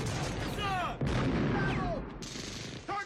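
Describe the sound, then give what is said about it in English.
Loud, dense gunfire and explosive blasts crowd together in a chaotic action-movie barrage, with sharp cracks over rumbling booms and descending whistling tones, continuous with no pause. “Now, the statics here, these things are all the second, all the explosions and stuff.”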